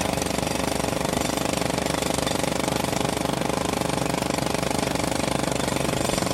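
A jackhammer pounds continuously at a rapid, steady rhythm, loud, filling the whole stretch with harsh mechanical rattling and no voices.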